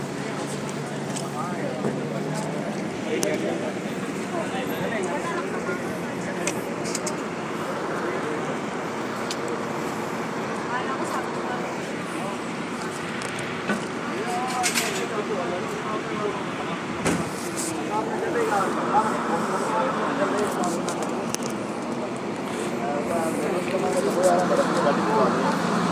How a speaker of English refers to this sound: Here it is now, and it basically goes every hour, although sometimes it goes every half an hour. Bus has arrived, so I'm hopefully going to get on it shortly.